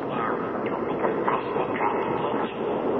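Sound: moving train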